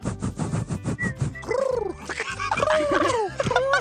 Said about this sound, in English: Is it a bird? Owl? I'll take bird. Do next one. Oh, it's a pigeon.